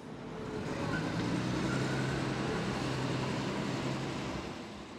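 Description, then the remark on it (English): A steady wash of street traffic heard while walking down a street: continuous low engine rumble and tire noise from passing cars and larger vehicles, swelling slightly mid-clip, with no voices. “I'm walking down the street, looking at my phone, and like anyone else wearing earbuds, try to block out the noise.”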